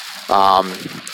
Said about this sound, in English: I'm sorry if you hear background noise, it's dumping rain here in Iowa right now, just like in November might do.